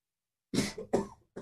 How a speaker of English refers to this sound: Sorry, I coughed in my hand, so I won't offer my hand, and I won't even bump it. I'll use my elbow.